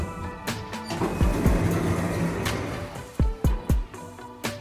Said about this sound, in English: Doors opening.